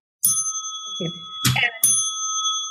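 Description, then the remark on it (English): A bright handbell rings out three times in quick succession, each clang leaving a sustained, shimmering metallic tone that hangs between strikes, fairly loud. It is the bell rung by the man driving a Schwann's frozen food delivery truck when stopping in small towns. “We live in these tiny towns, and a man in a truck with frozen food in the back would drive and stop at the and ring a bell?”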